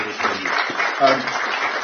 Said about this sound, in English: And also thank you for the organisers at Equinox, which is this site. So maybe we can just give a round of applause for this.